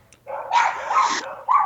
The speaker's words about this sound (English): Are you like in the dog pound right now? No, it is a little bit of surround sound. We're going to turn up the woofers on the, it's kind of, it's hard to answer that question when there's dogs barking like that.